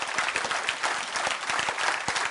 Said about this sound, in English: And not everybody can do it all, but I'm going to wait while you clap your hands right there. Will you do it?